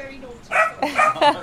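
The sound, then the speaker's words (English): An excited assistance dog puppy in training lets out three quick, high-pitched yappy barks in close succession, fairly loud, with faint voices murmuring underneath. “We've got an excited dog in the background. Oh, it's a puppy.”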